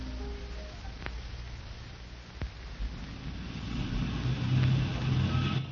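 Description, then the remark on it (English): The engine of a white roadster idles with a steady low rumble and a broad hiss, growing a bit louder and throatier toward the end as if revving slightly. There is no talking. “My car's parked at the end of the alley. It's a white roadster.”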